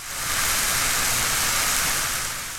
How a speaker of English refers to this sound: Did you say it sounds like rain? That's right. It's rain, except it's actually onions frying in a pan.